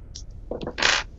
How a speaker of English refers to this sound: How many dice is that? 3. So roll 3 more.